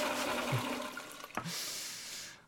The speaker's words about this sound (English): I must have flushed this thing 20 damn times, and this one little nugget just keeps floating back up.